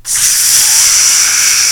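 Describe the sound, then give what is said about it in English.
A voice imitates a steady, loud hiss of gas rushing out of a Schrader valve, a sustained breathy spray sound lasting under two seconds with no talking. “Yeah, little ice cubes get stuck in the fucking Schrader valve.”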